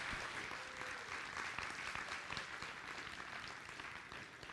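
A crowd of people breaks into sustained applause, a dense, steady wash of many hands clapping at once that holds fairly even in loudness for several seconds.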